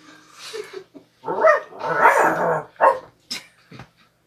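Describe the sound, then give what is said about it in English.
A dog at a closet door barks in a short run of loud bursts: a few yips, then a couple of longer, drawn-out barks, followed by sharper brief ones trailing off. “Dog is scratching at the door of the closet.”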